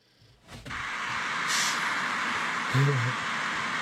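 An angry buck deer snorting and blowing: loud, forceful breathy whooshes of air that stretch on, with a sharper hissing burst midway and a brief low grunting note near the end.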